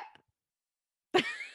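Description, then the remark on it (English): A single sharp dog bark rings out after a short quiet pause, preceded by a brief faint sound at the start; nobody is talking. “He's just going to bark,”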